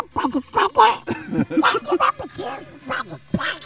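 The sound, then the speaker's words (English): A person does a loud imitation of Donald Duck's voice, a run of raspy, garbled quacking syllables in speech-like bursts with brief pauses between them. “That's actually a really good fucking Donald Duck.”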